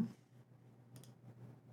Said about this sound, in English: And I'm going to share my screen. I'm clicking buttons here. Clickety, clickety, click. Boom.